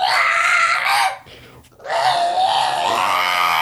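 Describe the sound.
Someone does a Donald Duck voice impression: two loud, raspy, squawking bursts of garbled babble separated by a short pause, high and buzzy throughout.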